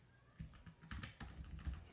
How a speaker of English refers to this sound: And so I'm sorry, I was typing while I was talking. I do apologize for that.